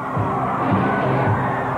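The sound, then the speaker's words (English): A capacity arena crowd roars and cheers steadily for World Wrestling Federation Heavyweight Champion Hulk Hogan after his win over Tiger Chung Lee, a dense, continuous wall of voices with a few louder swells, loud throughout. “Hulk bringing this capacity crowd to its feet. Oh, do they love him?”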